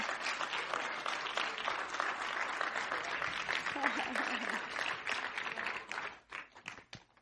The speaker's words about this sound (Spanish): Denle un aplauso a mi esposo, ¿verdad?